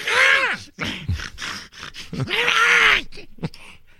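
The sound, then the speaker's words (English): A voice mimics heavy, strained breathing and drawn-out groans, two long loud moans framing a run of short panting huffs, exaggerated, with no actual words spoken. “Yeah, there'd be a lot of heavy breathing going on.”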